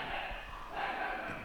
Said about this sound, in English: Oh, dog fight. Somebody savaged. Heavens, Southland. How exciting. South London for you.